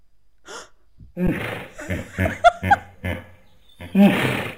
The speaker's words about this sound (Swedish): Men nu måste jag få spela upp ett hippoljud istället bara för att visa att det är ganska lika.